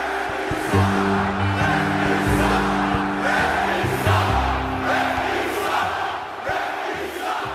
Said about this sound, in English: Does the sound of those 18,000 people screaming at you or booing you, does it sound any different than it sounded when you started?